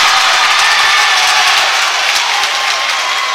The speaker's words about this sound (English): You can hear the Green Wave fans cheering. They love the effort here in the third quarter as Gallatin trims their deficit to six, 32-26, 3:01 left to go in this third quarter.